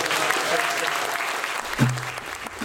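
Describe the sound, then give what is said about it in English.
An audience claps steadily in a dense, continuous wash of applause, and a low voice briefly sounds beneath it near the end. “And so big round of applause.”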